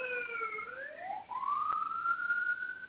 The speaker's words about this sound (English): Who's got the siren? Don't mind me. My window's open. There's a fire truck going by.